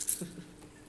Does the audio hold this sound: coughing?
no